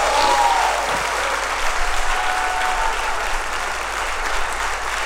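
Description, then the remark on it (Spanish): A large audience claps loudly and steadily in a dense, sustained wash of applause, with a few faint whistles rising briefly above it near the start. The applause is given to God during a religious service. “Dale un aplauso al que vive y reina para siempre.”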